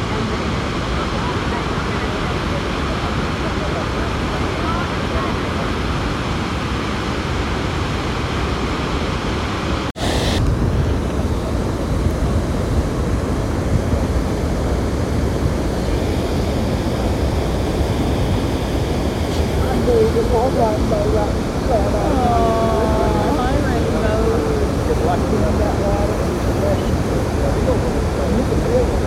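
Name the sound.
roaring waterfall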